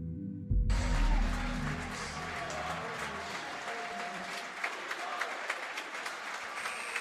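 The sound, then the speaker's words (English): A crowd bursts into sustained applause after a brief low thump at the start, the dense clapping holding steady and loud with scattered cheers throughout, at a Unity Christian vs Holland Christian high school basketball game at Herringa Civic Center Place, after the first quarter, during a brief ceremony honoring Richard Nagelkirk. “The round of applause you are hearing right now, they just had a brief ceremony honoring Richard Nagelkirk.”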